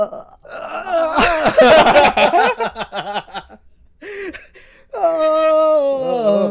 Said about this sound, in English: He was yawning. He was yawning.